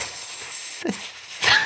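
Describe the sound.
A voice imitates snakes hissing, a sustained breathy hiss that swells and fades, with a brief vocal catch in the middle and a louder burst of hissing near the end.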